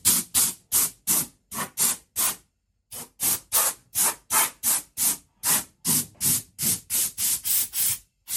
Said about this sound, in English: But okay, we're just gonna give this a second, and to speed up the process, we're gonna hit it with some air, some high pressure air, and that's just to in case there's a crevice I didn't get.